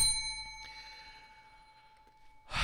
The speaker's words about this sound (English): Ring the bell.